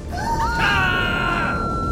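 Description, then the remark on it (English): A high, sustained scream rises and holds a strained, piercing pitch for about two seconds, loud, with no talking around it. “The former Captain Moon, his weave all askew, was deafened by the screams.”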